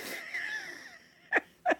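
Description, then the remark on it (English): A honking, whistly nose blow that wavers for about a second, followed by two short, sharp snorts in quick succession. No one speaks. “She's blown her nose over and over again during this episode.”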